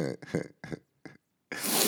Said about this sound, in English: You're going to hear me sniffle a lot. No, I'm not on drugs. It's just that, you know, it's cold in New York now, and I had to get on the train today, so I think I've been contaminated with New York City mass transit germs.